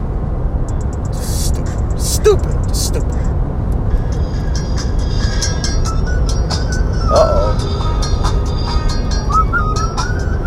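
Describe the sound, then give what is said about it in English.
A heavy construction truck rumbles loudly and steadily outside, its deep engine drone filling the whole stretch, with faint higher squeaks and hisses over it and a person speaking briefly. “Oh, this construction truck is wildin', B.”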